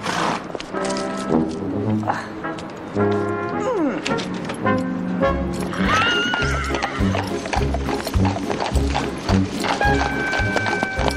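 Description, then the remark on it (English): A horse neighs and whinnies loudly while its hooves clip-clop in a steady, quickening rhythm as someone makes off with it, with some indistinct voices mixed in. “Hey! Come back with that horse!”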